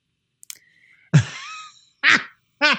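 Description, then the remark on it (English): A brief click, then three loud, buzzy fart noises: a long sputtering blast followed by two shorter, pitched raspberries with a brief pause between them, with no talking. “And so this one person who posted responded to the ad, and their whole they sent 30 seconds of fart noises.”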